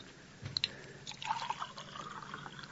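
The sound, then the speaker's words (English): Water pours into a glass with a gurgling, splashing trickle whose pitch rises as it fills, clear over a faint background hiss, with no talking. “hand me that bottle of pills. My head starts coming off if I get up. Here. And a little water”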